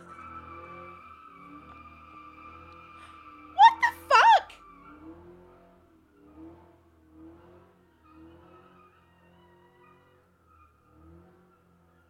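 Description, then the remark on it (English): A car engine drones with steady tones, then tires screech in a sharp burst of skidding around the middle, followed by quieter engine rumbling with brief surges; a person speaks briefly. “It's that car is in Struggle Town.”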